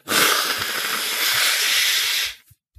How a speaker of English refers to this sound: Sorry, exactly. I was just blowing my nose. Like that.